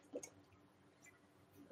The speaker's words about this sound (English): Just talking a bunch, so I'm going to take a sip of water here.